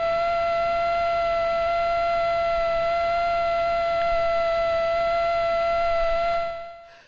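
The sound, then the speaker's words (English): A male Aedes aegypti mosquito's wingbeat, at about 600 hertz (600 beats a second), makes a steady, high, rich whine, unbroken and even in pitch for several seconds before it fades out at the end. No one speaks. “That is a male mosquito buzzing its wings at something like 600 hertz, 600 times a second.”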